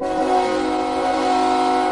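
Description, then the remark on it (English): A loud, sustained train horn blares steadily for a couple of seconds, a rich chord of droning tones holding without a break. No one speaks over it. “Still pain train, Tony. Hit the pain train.”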